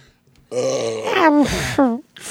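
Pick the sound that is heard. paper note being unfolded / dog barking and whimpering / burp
burp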